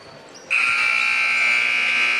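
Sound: basketball end-of-half buzzer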